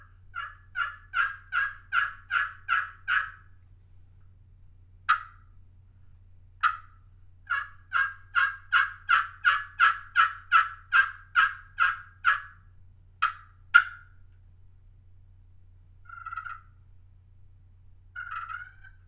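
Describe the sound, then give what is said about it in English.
A slate-over-glass turkey call in a dogwood pot, worked with a waterproof striker from Cubby's Custom Turkey Calls, gives a run of sharp, rhythmic yelps in quick series, pauses, another long run, then a few softer purrs and clucks at the end. “So I'm going to play this slate over glass in a dogwood pot with this waterproof striker.”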